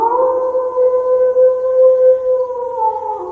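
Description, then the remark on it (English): A single long, steady howl holds one sustained wavering tone for over three seconds, loud, with no talking over it. “3 howls out of 3.”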